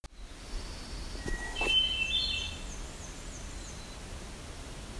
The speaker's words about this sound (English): So as the American Redstart was singing, while I was climbing down, the black-throated blue warbler sang a little bit.